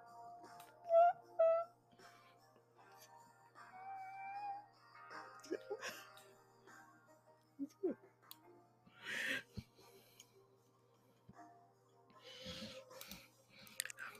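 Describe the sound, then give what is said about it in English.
A quick, hissing sneeze bursts out midway, with a second, softer one a few seconds later; earlier there are short high-pitched meows and quiet rustling in an otherwise hushed background. “God bless you.”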